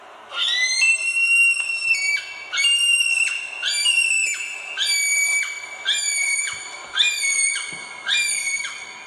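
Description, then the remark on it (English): A male kiwi gives a series of about seven shrill, high whistling screams, each rising then sliding slightly down, repeated in a steady rhythm with short gaps and no talking. “It's a high screaming call. So here's a male kiwi.”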